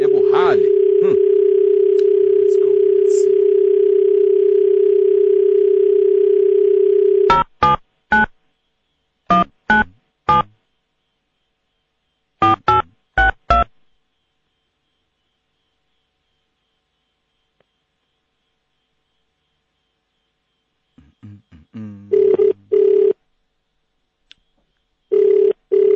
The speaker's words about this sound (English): The phone.